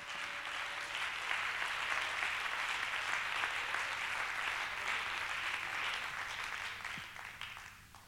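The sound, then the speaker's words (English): A large crowd claps together in sustained, dense applause, clapping their hands unto the Lord in praise, holding steady for about seven seconds before tapering off, with faint voices scattered underneath. “One more time, why don't you clap your hands unto the Lord and give him some praise.”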